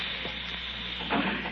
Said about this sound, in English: Listen. You hear that? It's the gas. Someone's turned on the gas. I can smell it.